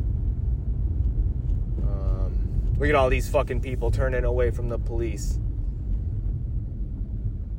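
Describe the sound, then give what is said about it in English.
Steady low engine rumble fills the interior of a moving car throughout, a constant droning hum, while a man speaks loudly over it for a few seconds in the middle; he is podcasting while driving. “So yeah, I just thought I'd add this, do some podcasting while I drive on to doing things that I actually want to do.”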